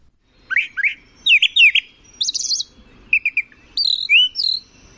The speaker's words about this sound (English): The brown thrasher has the largest repertoire of any bird in North America, more than 1,800 different phrases that this bird can make.